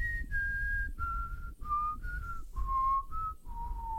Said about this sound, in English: that you can say that you whistled it and no one will ever know the difference.